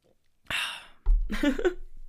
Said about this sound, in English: Sorry, I need to swallow some water.